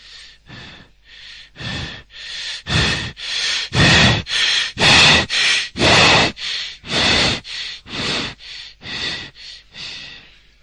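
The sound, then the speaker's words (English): A person imitates Cheyne-Stokes breathing: about twenty quick, gasping breaths, swelling louder toward the middle and then fading again, with no talking. “It's called Shane Stokes breathing. You just watch the patient.”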